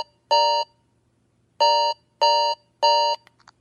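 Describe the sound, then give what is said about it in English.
A phone alarm tone called Osmium is previewed while choosing an alert ringtone, sounding in four loud, bright electronic bursts: one, a pause, then three in quick succession, followed by a couple of faint clicks. No one speaks. “Osmium. Checked.”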